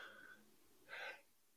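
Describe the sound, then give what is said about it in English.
A single sneeze: a breathy intake rises into a hissing build-up, a brief pause, then a sharp, loud burst at the end. “pardon me. Bless you.”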